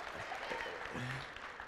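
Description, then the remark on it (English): A church audience applauds its pastors in a dense, steady wash of clapping that holds at an even volume throughout, with a few faint voices calling out beneath it. “Would you give it up for your pastors this morning?”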